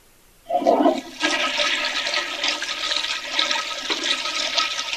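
A toilet flushes, starting with a sharp clunk of the handle and then a loud, steady rush of swirling water that continues without fading. No one speaks.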